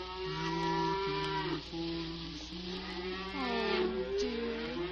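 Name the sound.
cows mooing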